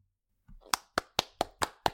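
Six crisp hand claps for the winner of a t-shirt giveaway, in a steady, fairly quick rhythm after a short quiet start, each one sharp and bright, with no voices in between.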